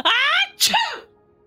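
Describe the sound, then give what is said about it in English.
A single staged sneeze, loud: a drawn-out voiced 'ah' rising into a sharp, breathy 'choo' burst, then quiet. A person imitating a sneeze rather than a natural one. “No, that was the code sneeze. Yeah, which sneeze was that? That is my fake sneeze.”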